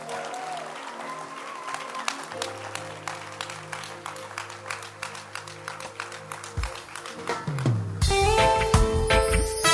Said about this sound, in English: Amen. Let's keep clapping for Jesus.